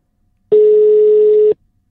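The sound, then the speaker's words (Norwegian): A single telephone ringing tone of an incoming call sounds once, a loud steady beep lasting about a second, then cuts off into silence with no voices around it. “Du, det så hyggelig å få lov til å være med på dette her, så takk for at du ringer.”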